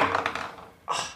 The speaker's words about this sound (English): Why am I still rolling this dice? Yeah. Don't worry about it. Yeah, I got it. Natural 20.